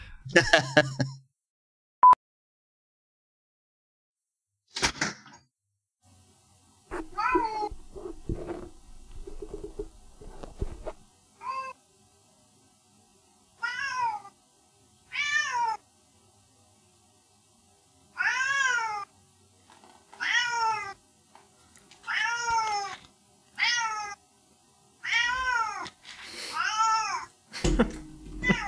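cat meowing

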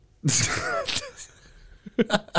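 sneeze

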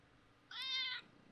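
cat meowing

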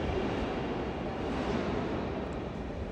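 train passing by

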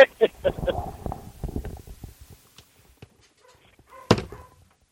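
dog barking and whimpering

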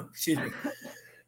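throat clearing

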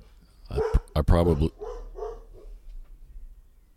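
dog barking

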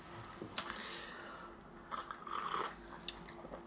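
sipping hot coffee

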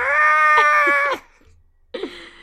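cat vocalizing

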